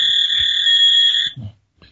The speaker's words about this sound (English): Oh, my God. There goes that fax machine again.